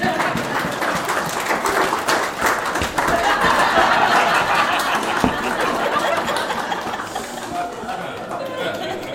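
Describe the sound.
A crowd claps and cheers steadily for several seconds for a football team, a dense, continuous wash of applause with murmuring voices mixed in, swelling slightly midway before easing off.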